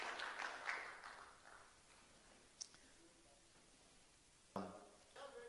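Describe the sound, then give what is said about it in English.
An audience claps hands for the Lord in a soft, scattered patter that fades out within a second or two, followed by quiet and a few isolated claps or knocks later on. “Clap your hands for the Lord for what he has done for us.”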